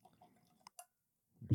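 Bourbon trickles quietly into a new riff glass, with a couple of sharp clinks partway through and a louder knock at the end. Faint voices murmur under the pour.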